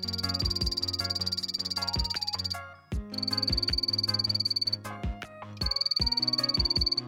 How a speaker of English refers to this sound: The call of the phantasmal poison arrow frog is a high-pitched chirp or trill. I think it sounds kind of like someone blowing a whistle.